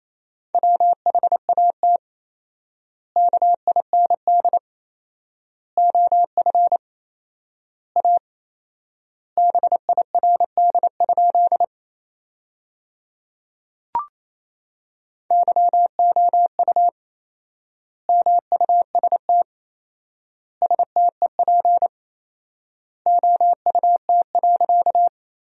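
Morse code at 28 words per minute with four-times word spacing, sending sentences of common words: a steady mid-pitched tone keyed in rapid dots and dashes, sent in short word bursts separated by long silent gaps, with one brief click midway.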